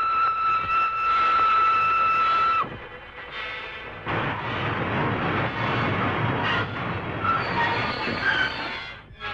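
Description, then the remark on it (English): A moving train rumbles and rattles along the rails, loud, opening with a sustained high metallic wheel squeal before settling into steady clattering noise. “For heaven's sake, stop this train.”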